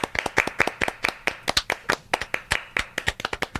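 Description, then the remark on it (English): Brisk hand clapping, a quick stream of sharp, bright claps at a fairly steady pace, slightly uneven as if more than one pair of hands joins in. No one speaks. “We're waiting for you to clap”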